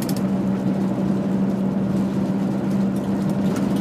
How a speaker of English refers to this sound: I'm seeing cars come past here. Every single one of them, including the camper vans. Like, they look good.